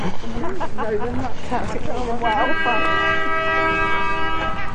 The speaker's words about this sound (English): Some boats just let off its air horn.